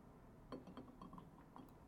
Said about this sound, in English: Now, if you want to pour a little bit more in for a second, I want you to pay attention to...